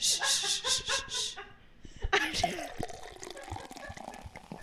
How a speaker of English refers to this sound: I'm going to have to pour her more champagne.